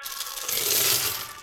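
A pile of donated coins, mostly pennies, pours out to be counted in a continuous, bright metallic jangle, fairly loud, swelling slightly mid-stream before tapering, with no voices.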